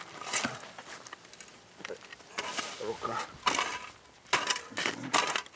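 Shovels bite into soil with repeated gritty, crunching scrapes at an uneven pace, close by and fairly loud, each stroke followed by a softer rustle of loose earth.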